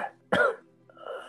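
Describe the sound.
A person imitates a cough with one sharp, raspy burst, fairly loud, followed after a short pause by a softer, throaty vocal sound.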